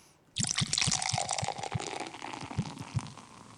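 Beer pours straight into a glass with a steady splashing rush and a rhythm of low glugs, about eight of them, running to the end with no voices.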